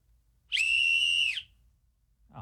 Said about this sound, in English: This is a big letdown. That ain't no loud whistle. That was not a loud whistle at all. Sounds like it's a college football game. Boy, they did me dirty on this one. But you didn't blow it as hard as you could. I think I did.